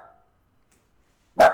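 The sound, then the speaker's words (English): A single sharp dog bark bursts out loud near the end, after a faint trailing sound and a stretch of silence. “Your dog is barking and you're like, I'm so sorry.”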